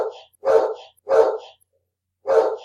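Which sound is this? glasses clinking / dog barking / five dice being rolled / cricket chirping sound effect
dog barking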